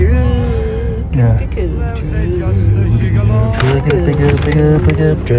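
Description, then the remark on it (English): A loud, steady pickup truck engine hums and drones, its pitch wavering and revving slightly over about five seconds, with voice-like tones mixed into the rumble. “Pickup truck. All right. Tom calls it his pickup truck.”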